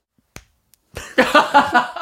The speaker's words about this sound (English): What was that? Was that a clap? I just punched the wall. I think I broke my giant doll-sized hands.